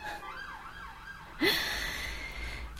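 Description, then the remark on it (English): A wailing ambulance siren rises and falls in the background, its sweeping tone steady under the background hum, then a louder burst of noise cuts in partway through as the siren continues. “Oh yeah, you hear that ambulance in the background?”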